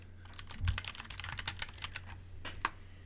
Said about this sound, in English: I'm sorry for the typing